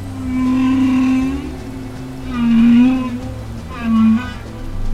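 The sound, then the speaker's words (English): Three drawn-out, low whale calls rise and fade, each a tonal moan with bright overtones, the first longest and the last shortest, over a steady watery hiss with no talking. “We're trying to decode whale communication to find out not only what they're talking about in terms of, you know, semantics, but also how complex it is,”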